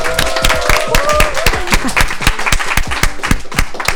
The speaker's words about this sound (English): Okay, Girls on Fire, give yourself a round of applause.